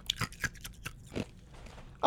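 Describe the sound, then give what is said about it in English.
Crunchy chewing of ice cubes from a drink, with a handful of sharp, irregular crunches spread across a couple of seconds and a louder crunch right at the end. “Okay, I won't chew my ice in the”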